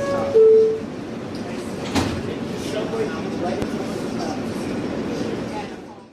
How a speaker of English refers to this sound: In a World Trade Center bound E train, the next stop is 14th Street. Stand clear of the closing doors, please.